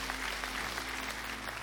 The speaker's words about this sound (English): Hello to everyone at Philadelphia Tabernacle. Come on, let's say hello to them. Let's give them a cheer from here.